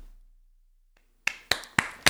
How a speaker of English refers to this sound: I'm just gonna clap for him.